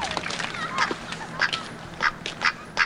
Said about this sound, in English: Pretty nice duck.